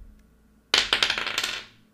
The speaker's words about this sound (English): Go ahead, roll 2d6, and I'll give you a plus 2 on this, because this is a funny idea.